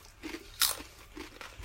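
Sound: crunching on crisps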